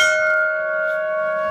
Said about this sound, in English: At 11 a.m., church bells ring.